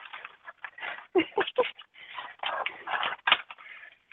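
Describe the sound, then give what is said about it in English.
Scissors snip through paper in a quick, irregular series of crisp, crunchy cuts, some sharper and louder than others, continuing steadily for several seconds with no talking. “So I'm using scissors to cut down on the sound of paper being shredded like the cats do.”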